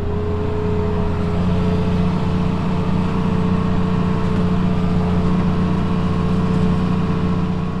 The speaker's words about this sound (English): We're inside the cab of his blue late model New Holland tractor.